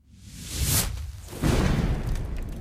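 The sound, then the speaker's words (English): A voice imitates a collapsing vacuum that tries to suck everything in around it: a breathy, rushing whoosh that swells, then a second louder, rumbling surge that holds steady before cutting off. “This thing begins to collapse, and the vacuum tries to suck everything in around it.”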